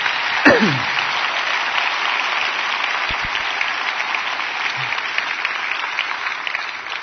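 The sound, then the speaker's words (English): Sustained crowd applause for people who came up and shared, a dense steady patter of many hands clapping at even loudness throughout, with a brief sharper knock near the start and no speech. “Yeah, give them another round of applause.”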